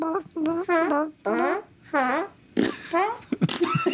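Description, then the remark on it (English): A quick series of loud fart noises, about seven blubbery, pitch-wobbling blasts in a row, with brief gaps between them and a sharper, noisier burst near the end. “Instead of a dead silence, what if there's one you can fart on every step that you take?”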